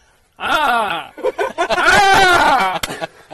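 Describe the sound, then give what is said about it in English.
A person vocalizes an imitation of a dog, a loud, wavering howl-like cry followed by a run of choppy, laugh-like yelps and a second drawn-out whine, with no words spoken. “I can do a hardy dog.”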